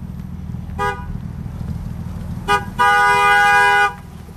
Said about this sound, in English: I just had to get to the mystery of this sound. Every day I hear someone honking a horn, I just couldn't help myself.